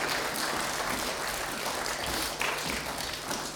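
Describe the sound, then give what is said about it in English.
A crowd applauds the actors steadily, many hands clapping together in a dense, continuous wash of sound that holds at an even level throughout without any voices. “Can we give a clap to our actors if you'd like to return to your places?”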